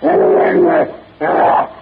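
A gigantic half-human brute lets out a savage howl of rage in two loud, harsh bursts, the first longer and wavering, the second shorter after a brief pause, with no talking.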